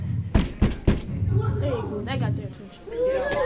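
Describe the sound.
Three quick, sharp knocks on a school music classroom door, evenly spaced, followed by a murmur of several voices talking in the background.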